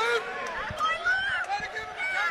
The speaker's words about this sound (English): Good, and honestly, you probably hear the crowd yelling, taste of his own medicine.